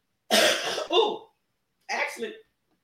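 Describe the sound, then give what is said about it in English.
Two harsh coughs, the first a longer double-burst and the second shorter after a brief pause, with no talking around them. “I hate I'm starting to cough there.”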